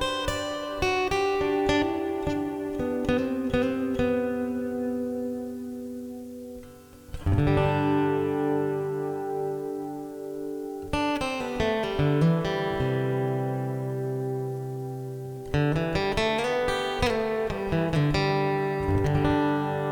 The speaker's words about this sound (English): So if you're looking for something that does multiple functions and does multiple functions well, the Fishman Tone Deck is something you should consider. Here's how it sounds.